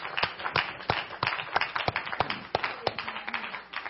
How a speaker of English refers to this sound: And one more time, let's just clap our hands to the Lord for His greatness.